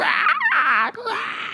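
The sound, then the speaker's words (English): A person vocally imitates a creature's shrill, warbling screech, loud, with wavering pitch sweeps. It runs about a second and a half, with a brief break near the middle. “You hear this screeching outside, this...”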